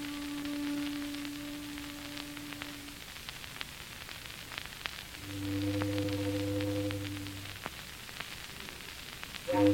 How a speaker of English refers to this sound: Foghorns always have to sound so mournful.